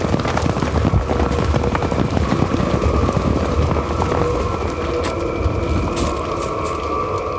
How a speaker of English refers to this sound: It seems like the faster I'm going, the horses are slowing down.